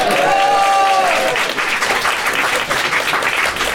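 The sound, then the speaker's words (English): A live audience at Manny's in San Francisco applauds loudly and steadily for several seconds, a dense wash of clapping, with a brief voiced cheer or call rising over it at the very start. “And today we are live in San Francisco at Manny's. Please clap.”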